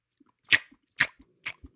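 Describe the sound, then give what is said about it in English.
Three wet, smacking licks arrive in a steady rhythm about half a second apart, each a short sharp slurp with faint softer clicks in between, and no voices. “Can we get that licking sound clean, please?”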